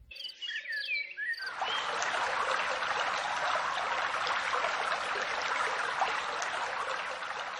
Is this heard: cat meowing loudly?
no